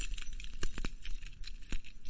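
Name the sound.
keys jangling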